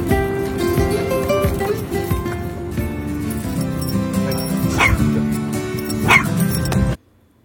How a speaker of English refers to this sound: I brought Bo, Pom Poms, Penny, and Kai because they're the yappers. Hey, no. They're going to be barking at him.